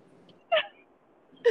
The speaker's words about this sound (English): No, I'm squealing of scaredness.